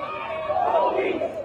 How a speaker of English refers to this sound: We're sticking with a larger number right here. So turn it on here and show how big this crowd is.